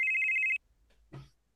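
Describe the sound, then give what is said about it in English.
A phone rings in the middle of the night with a bright, rapidly trilling electronic tone that cuts off abruptly after about half a second, followed by a short pause and a brief voice. “Your phone is ringing.”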